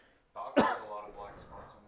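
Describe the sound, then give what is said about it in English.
A single sharp, loud cough right up close to the microphone, a harsh burst followed by some throaty, voiced sound trailing off. “Oh, I turned my head to cough away from the mic and immediately turned back and coughed directly into it.”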